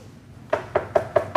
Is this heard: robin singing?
no